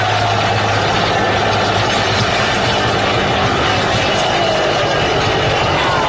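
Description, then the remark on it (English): A heavy truck engine, its pistons blown, runs loud and rough for several seconds, a dense continuous roar with a low rumbling drone underneath and no clear rises in pitch. “if this thing is still constantly turning the tires and the RPMs, there's really no RPMs pulling because I think it just blew out every piston that was in this truck.”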